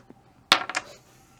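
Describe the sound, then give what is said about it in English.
Two dice land with a sharp clack and tumble through a few quick, bright rattling bounces before settling on a two and a four, all within about half a second, with no talking. “That's one dice. I'm at minus one.”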